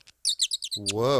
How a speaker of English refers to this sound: Whoa. Sounds like you need some WD-40. It is an Audubon bird call. I just want you to know that.